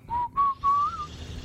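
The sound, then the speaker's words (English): A short whistled melody opening a song on the radio: three clear, sustained notes rising slightly in pitch, heard alone over a faint low background hum. “It starts with the whistling.”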